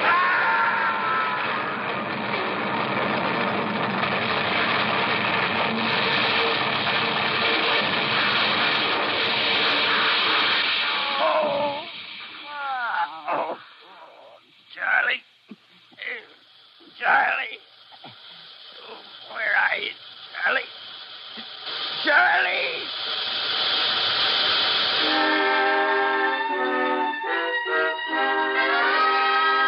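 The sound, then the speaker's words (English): A loud, steady roar of a speeding train that hits something on the track breaks into a string of heavy crashes and smashing impacts, then gives way to sustained tones as the wreck settles, with no talking. “Sheriff Wagner of Ravenna was notified of the wreck.”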